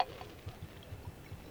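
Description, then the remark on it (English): A solution of corrosive sublimate is poured into a beaker, a soft, steady trickle with low gurgling pulses that bubble up at an uneven rhythm. The pouring is by the Marquise de Brinvilliers in the radio drama Crime Classics. It is quiet, with no voices. “Marie Magdalene, the Marquise de Brinvilliers, pouring corrosive sublimate in solution into a beaker.”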